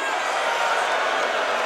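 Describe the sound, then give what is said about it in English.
A festival crowd in front of a packed stage screams as loud as it can after a count of three, in one continuous, dense roar of many voices, steady in volume and unbroken from start to finish, with no single voice standing out. “So I'm gonna count to three and I want you to scream as loud as you can.”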